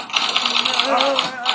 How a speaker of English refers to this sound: Oops, it's the typewriter. Hold on. Why is it typing? I didn't mean for it to type.